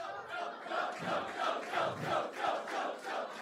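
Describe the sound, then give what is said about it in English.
A crowd cheers and chants in steady rhythmic surges, roughly one swell every half second, loud and sustained throughout with no single voice standing out. “That's not fair because you're cheering for both of them.”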